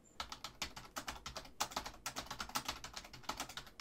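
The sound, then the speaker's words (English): Rapid, steady clatter of keys on a computer keyboard as someone types a quick search, fairly loud, with dozens of crisp keystrokes in quick succession and no voices. “Sorry, folks, if you're hearing me loud typing.”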